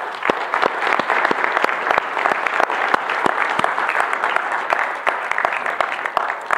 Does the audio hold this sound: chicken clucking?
no